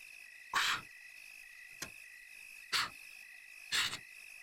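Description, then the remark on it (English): Crickets chirp in a steady, high-pitched drone through the night air in a graveyard beside a row of gravestones, broken by a few brief, louder rustling bursts spaced a second or so apart. No one speaks. “Nothing but the sound of crickets in nature about.”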